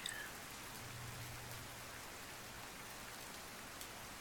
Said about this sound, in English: Listen to the rain falling and pattering against the windows.